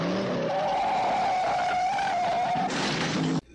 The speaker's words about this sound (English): Oh, let's get that car chase. Come on, put the car chase thing in.